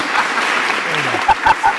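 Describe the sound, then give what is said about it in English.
A person applauding: a steady patter of hand claps, ending with three louder, distinct claps spaced evenly apart. No one speaks. “Yeah, why am I applauding?”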